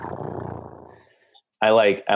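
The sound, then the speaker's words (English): A voice imitates a panther's purr, a low, rough rumbling for about a second that fades away, followed by a short burst of someone talking. “And kind of like does a little like purr sound.”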